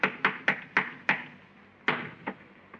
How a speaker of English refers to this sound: Hey, listen. You hear that? Somebody's walking on the ceiling. Listen.